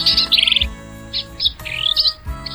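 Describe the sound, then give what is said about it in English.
A black-capped vireo (Vireo atricapilla) sings a series of quick, buzzy, scratchy chirps and warbled phrases in short bursts, heard clearly with no talking. “It's Vireo atricapilla, the black-capped vireo.”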